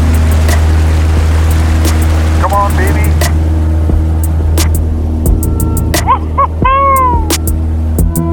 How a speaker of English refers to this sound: We leave the water and start to fly. All right. Never doubted it for a second. The plane's pontoons just seem to clear the tall firs and cedars at the end of the lake.